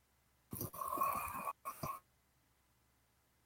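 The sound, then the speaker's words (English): A brother snoring: one loud, rough, long rattling, buzzy breath followed by a shorter second rasp, then silence. No one speaks. “That was my roller snoring.”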